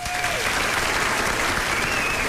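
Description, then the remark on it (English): Parents in a crowd applaud steadily for a couple of seconds, a dense wash of clapping that holds at an even loudness, with a faint whistle briefly rising above it. “Where are the parents in the crowd by applause?”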